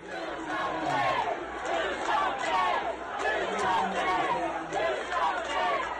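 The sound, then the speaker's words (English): A large crowd at a vigil in Dayton, Ohio, for victims and survivors of a shooting chants together in loud, rhythmic bursts, many voices shouting in unison over a steady roar of background voices, demanding that Ohio Governor Mike DeWine do something about guns. “In Dayton, Ohio, the crowd at a vigil for victims and survivors of the shooting demanded Ohio Governor Mike DeWine do something about guns. Their chant went viral.”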